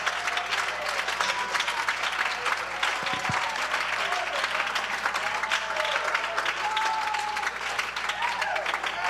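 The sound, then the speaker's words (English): An audience claps unto the Lord steadily and loudly for the whole stretch, a dense, continuous wash of many hands, with faint voices calling out beneath the applause. “Clap unto the Lord.”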